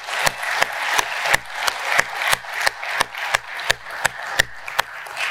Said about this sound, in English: So one more time, let's give a round of applause.